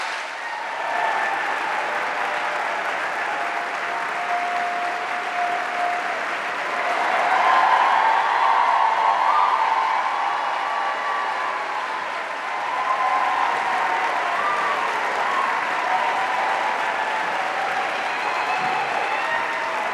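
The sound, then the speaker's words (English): Sustained applause from a large audience welcoming speakers Ijeoma Oluo and Michele Storms, steady and dense clapping that swells around the middle and continues without pause, with a faint murmur of voices and cheers mixed in. “So please join me in giving a warm welcome to Ijeoma Oluo and Michele Storms.”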